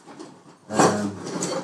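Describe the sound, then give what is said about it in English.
Soft shuffling gives way to a wooden drawer full of knives being pulled and rummaged through, its contents clattering and scraping for about a second with no voices. “Where the hell is it? Oh my god, maybe it's in a different drawer.”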